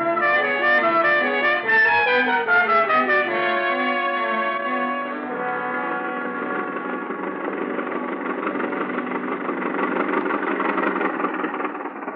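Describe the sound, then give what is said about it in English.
A car engine runs steadily, its droning hum shifting in pitch at first before settling into a constant rumble for the rest of the stretch, with no voices. “The car's just around the corner.”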